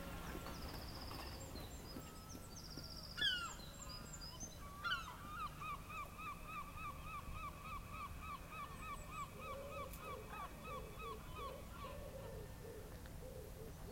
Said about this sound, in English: I love coming and just watching and listening to all the birds. It's this little secluded park. There's just a heron that's flying around, and the seagulls are not happy about it.